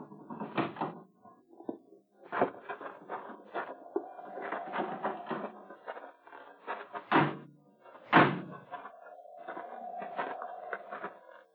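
door opening and closing

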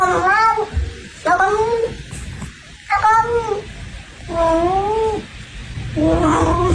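cat meowing

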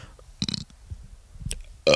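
burp

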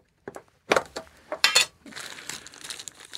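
crinkling packaging being opened

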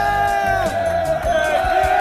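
football fans cheering

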